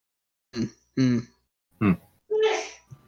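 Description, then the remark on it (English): A series of four sharp, voiced sneezes spaced unevenly over a few seconds, the last one longer and breathier with a hissing burst, followed by a faint catch of breath. “Bless you.”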